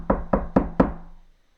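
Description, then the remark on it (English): Four firm knocks on a wooden door in a steady, even rhythm, fairly loud, each with a short resonant thud, then silence as the last one fades. “You're going to get that knock on your door.”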